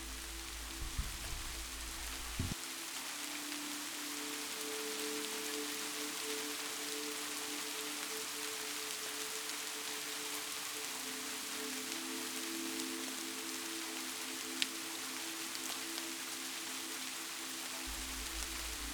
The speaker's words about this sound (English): The pace of the rain is changing now. The droplets, larger and heavier. You close your eyes and take a few moments to listen to the sound of the rain.